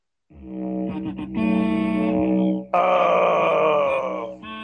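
A didgeridoo plays a low, buzzing drone with rich, shifting overtones and a few rhythmic pulses, then briefly dips before returning louder and brighter. No one speaks.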